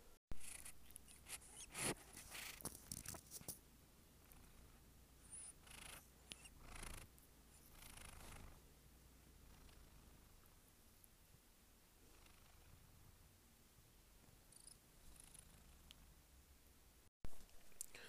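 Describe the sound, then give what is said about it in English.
A cat named Adam purring, a steady low rumble with a few soft rustling bursts near the start, continuing quietly on its own throughout. “That sound that you just heard was my cat, Adam.”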